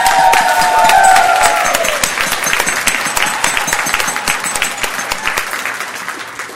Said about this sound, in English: Now I want you to direct your applause to Ben and Logan at the back who have done it all.